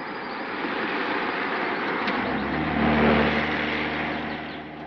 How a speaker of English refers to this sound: Here comes the car.